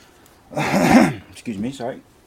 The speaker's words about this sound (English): Cough right into the mic.